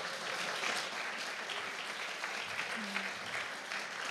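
Steady applause from an audience for a group of guests who shared their stories, dense overlapping claps holding at an even level for several seconds with no pauses or voices breaking through.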